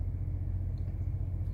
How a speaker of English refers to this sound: I'll turn the engine off.